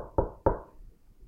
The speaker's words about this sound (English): I'm going to do X, Y, Z without realizing who was knocking at the door. Who was knocking at the door?